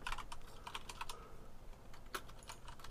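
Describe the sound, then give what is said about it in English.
Clicky mechanical keyboard typing, a steady stream of sharp, irregular keystrokes with no voices, some presses landing in quick bursts and others spaced apart. “I'm also sorry, Lloyd, that I've not purchased a not mechanical keyboard yet”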